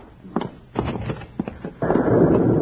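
A thunderclap of an approaching storm: a few sharp, cracking bursts in quick succession, then a loud, steady roar that keeps rumbling to the end. No voices are heard.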